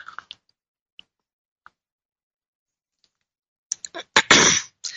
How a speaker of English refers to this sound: Take a sip of my spiritual espresso here.